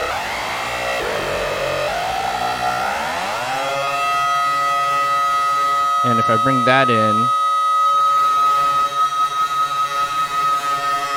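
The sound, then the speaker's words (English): A buzzy, harmonic synthesizer tone, with a square-wave low-frequency oscillator going into its modulation input, glides and bends in pitch, then jumps rapidly back and forth between two pitches in a loud, siren-like warble. A man speaks briefly over it. “And I also have a square wave low frequency going into the modulation input, and so I'm going to stop it at this one next step.”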